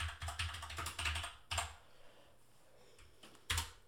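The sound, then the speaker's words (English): Rapid, forceful typing on a computer keyboard, with dense clacking keystrokes for the first second and a half, then a pause broken by a few hard, isolated key strikes, loud. “Sorry for the aggressive typing.”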